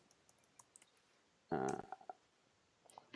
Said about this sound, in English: Oh, sorry, my mic is in my keyboard. You probably heard me typing really loud.